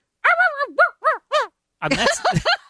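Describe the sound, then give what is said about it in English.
A person imitates a dog barking as a sound effect in a radio drama: four short, sing-song yips in quick succession, then a rougher, more breathy burst of barks, all fairly loud. “You would think they would have found somebody that could do sound like a dog.”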